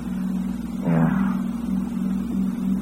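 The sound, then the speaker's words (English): A car engine hums steadily, with a brief surge in revs about a second in before settling back to an even, throaty drone. No one speaks. “Nice car you've got.”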